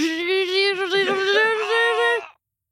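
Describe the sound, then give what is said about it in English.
A voice imitates a blender making homemade smoothies with a sustained, buzzing, mid-pitched whine that wavers and warbles for a little over two seconds, then stops abruptly. “That was a good blender.”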